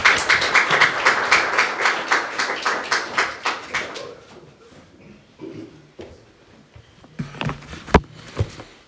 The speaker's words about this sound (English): But why don't you give a nice round of applause for our guest speaker